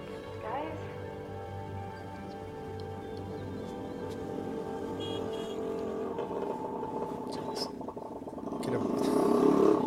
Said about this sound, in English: Movie budget, they could only afford a scooter.